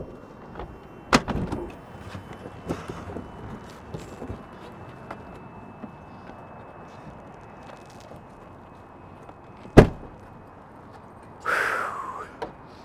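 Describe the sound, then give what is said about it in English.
Small aircraft doors being opened by passengers letting themselves out: a few latch clicks and rattles, then a sharp metallic clunk near the end followed by a brief scraping swing, over a low steady hum. “All right, if you remember how to open those doors, feel free to let yourselves out.”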